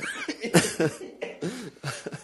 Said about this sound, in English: I was trying to hold in that cough, and you made me laugh. I couldn't hold it in. I'm sorry.